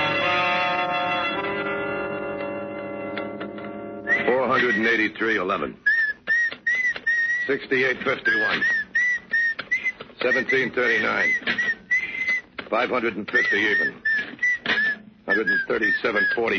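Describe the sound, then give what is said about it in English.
A lone whistler carries a slow, eerie tune of sustained, wavering notes, fairly loud, following a brief ringing chime at the start, with faint voices underneath. “Look, stop that creepy whistling, will you?”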